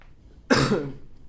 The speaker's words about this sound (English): Because right on cue as I cough, I think I recognize why, you know, I often kind of have to cough in this apartment. It's not because I have the coronavirus.